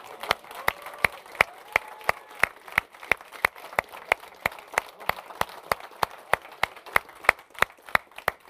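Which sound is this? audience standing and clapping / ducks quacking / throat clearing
audience standing and clapping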